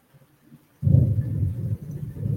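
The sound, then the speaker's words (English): After a moment of near silence, a deep rumble of thunder from a storm with lightning breaks in abruptly and rolls on loudly, heavy and low, with no voices over it. “There's thunder and lightning everywhere.”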